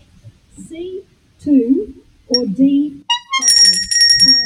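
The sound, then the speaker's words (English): A bright bell, rung by a quiz player, rings out loudly near the end, its shimmering tone lingering while people keep talking over it after a stretch of speech. “I rang my bell.”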